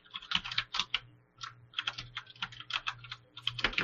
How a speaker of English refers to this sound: I can't believe you are actually talking in Slack. What? You just hear my keyboard going tick tick tick.